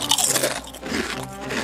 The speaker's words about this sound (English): That crunch sound is a winner. And I called mine the noisiest chips in the world.